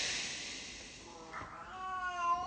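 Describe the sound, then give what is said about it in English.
After a moment of steady background hiss, a female cat lets out a long, drawn-out meow, rising and wavering in pitch and growing a bit louder toward the end, wanting to go into the other room. “Right now, she wants to go in the other room, sadly.”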